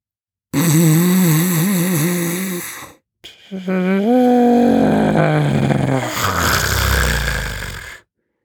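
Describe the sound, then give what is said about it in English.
An elephant seal on a beach snores loudly in two long, gurgling bursts; the first wavers in pitch, the second slides downward and breaks into a rough, breathy rasp. No one speaks. “Elephant seal snoring on the beach.”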